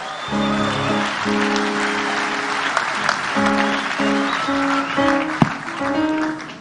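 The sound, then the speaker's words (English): A church audience claps hands for the Lord in a dense, steady wash of applause lasting several seconds, with sustained keyboard chords ringing underneath and changing pitch. “Clap hands for the Lord if you can.”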